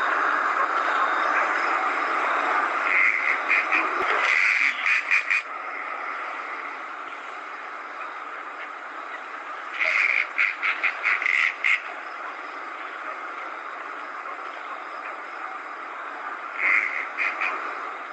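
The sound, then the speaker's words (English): Raspy, grating marsh owl calls come in three separate bursts, each a quick run of harsh, creaking pulses, set against a constant hissing background of insects or wind. “it's like a very raspy type, horse grating type of call, almost like a, you know, if you get a very broad branch and you bend it slowly, like a creaking door.”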